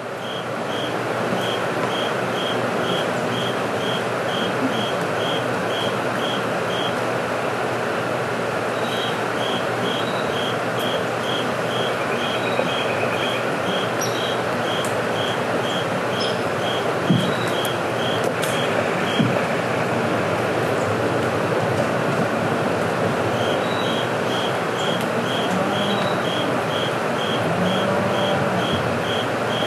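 The North Fork River near the community of Dora in the Missouri Ozarks flows with a steady, unbroken rush of water, while a rapid string of high, evenly spaced chirps pulses above it for most of the time. No one speaks.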